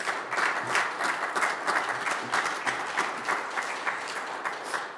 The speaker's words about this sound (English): Come on, clap your hands and tell the Lord thank you.